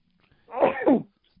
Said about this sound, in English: I had to sneeze there.